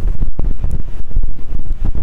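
Loud, blustery wind buffeting a microphone, with low rumbling gusts and crackly bursts that rise and fall continuously, harsh, with no voices present.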